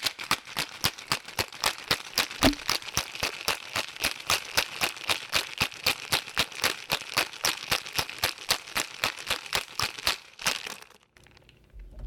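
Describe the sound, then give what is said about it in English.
A cocktail shaker filled with ice and a drink containing lemon juice is shaken hard in a fast, steady rhythm, each stroke a bright rattling clack of ice, repeated dozens of times for about ten seconds before stopping abruptly. “All right, so we're going to put it in the shaker filled with ice. Mm-hmm. It has lemon juice, so it's opaque. And you shake.”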